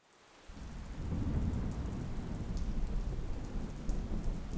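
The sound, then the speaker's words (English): A thunderstorm rumbles low and steady while rain pours down continuously, the deep roll of thunder building in after a brief quiet start and filling the whole stretch. “That night, we get another one of these beautiful fall thunderstorms.”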